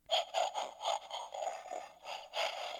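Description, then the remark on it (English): A recorded Bigfoot snort played from a Bigfoot sound device: a rapid series of rough, breathy huffs, about eight pulses in a steady rhythm, fairly loud and raspy with a hissing edge, and no talking over it. “Okay, that was the howl. I'm going to play the snort.”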